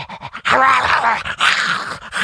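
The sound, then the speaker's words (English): A person imitates an aggressive dog named Bandit, growling and snarling in two loud bursts with a brief pause between them. “Yeah, he bites, so watch out.”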